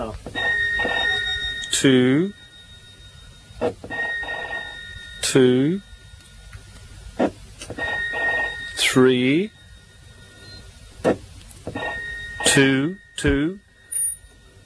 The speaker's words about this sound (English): This phone is going again, and I've missed it 3 times, and I'll try and catch it this time.